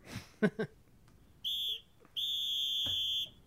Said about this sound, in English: Blow the whistle.